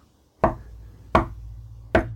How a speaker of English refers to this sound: Is that the thought police knocking on our door? Sure is.